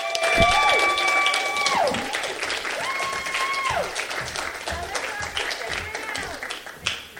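Steady, dense applause from an audience fills the whole stretch, loud and continuous, with a few sustained tonal sounds sliding downward in pitch over the clapping.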